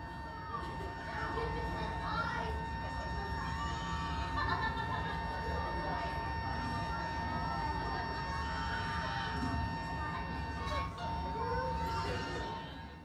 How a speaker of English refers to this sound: So for 45 minutes, those were the sounds of the plane that we were hearing.